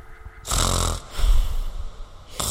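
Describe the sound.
A voice imitates a man's deep sleeping snores: two long, rumbling, breathy snorts separated by a rattling pause, with a third snore starting at the end.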